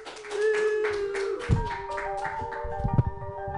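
An audience claps steadily, a continuous wash of hand claps, with sustained musical tones playing along and a couple of heavier thumps near the middle and end.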